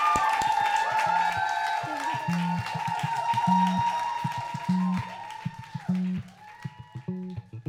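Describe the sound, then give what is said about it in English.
An audience claps and cheers in a dense, steady wash with whoops, over sustained musical tones, then the applause thins out into scattered claps near the end. “Please give yourselves a big round of applause.”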